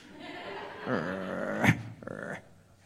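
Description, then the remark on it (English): A person imitates an angry dog's growl, a short rumbling snarl that rises into a sharp burst and trails off, loud, with no other talking. “Just growl.”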